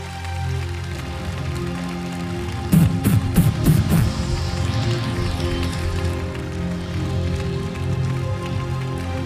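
Congregation applause, a dense, steady wash of clapping that runs the whole time, with a brief burst of louder, sharper claps near the start before settling back to an even patter.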